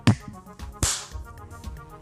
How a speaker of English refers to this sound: So I'll count down from three and then clap. Okay. So three, two, one.